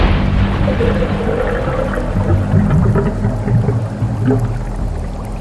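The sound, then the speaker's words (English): A loud, continuous roar of churning ocean water, deep rumbling underneath and a dense wash of spray on top, sustained without a break and with no voices. “The ocean exploded with sound.”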